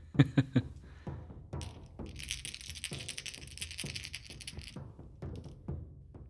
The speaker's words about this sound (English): I then roll 1d8 plus 4d6. I finally have four sets of dice, so I can do that.